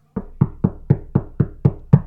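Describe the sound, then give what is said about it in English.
A police constable knocks eight times on the inside door of a house in Vancouver, firm knocks in a quick, steady rhythm, each a solid low thud, with no voices. “He found the porch door unlocked, and he opened it and knocked on the inside door.”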